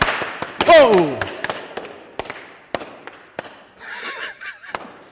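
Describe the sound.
Balloons being popped for a Fourth of July celebration, in a rapid, irregular burst of sharp, loud bangs, one after another, while a person exclaims and voices chatter in between the pops.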